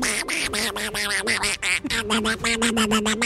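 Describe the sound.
A person imitates the voice of the cartoon character Donald Duck, a rapid, raspy, buzzing babble of quacking syllables that runs nonstop for a few seconds, loud.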